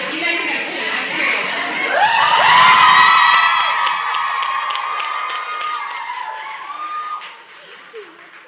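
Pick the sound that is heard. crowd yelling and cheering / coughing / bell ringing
crowd yelling and cheering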